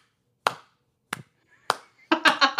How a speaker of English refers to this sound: Just my mom clapping.